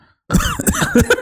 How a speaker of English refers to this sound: So just a shout out to Dick Cough. We've had the dick cough on a previous episode, and now we're bringing it back full force.